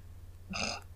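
A brief phone notification tone sounds once, a bright buzzy chime lasting about a quarter second, standing out clearly over a low steady hum with no talking.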